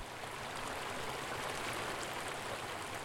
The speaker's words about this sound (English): For me, a run there meant a mind clear and cool, washed clean by the sound of running water streaming from Diamond Lake at the trail's end.